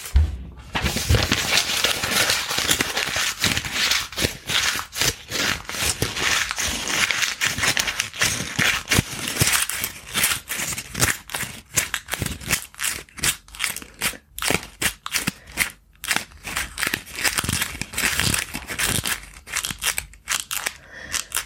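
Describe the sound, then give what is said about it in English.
Crunchy footsteps through dry leaves, a steady run of crisp, crackling rustles lasting the whole stretch, fairly loud and with no voices. “And as you inhale, you make strong steps, feeling the gratitude of the moment and that crunchy sound that you get as you walk along.”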